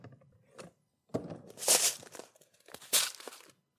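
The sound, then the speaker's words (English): Salt pouring out of a box: a faint gritty rattle, then two louder bursts of sandy, hissing rush with brief pauses between them, and no talking. “So I've got a box of salt.”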